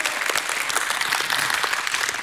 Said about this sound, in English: Somebody give God a hand clap and a shout of praise.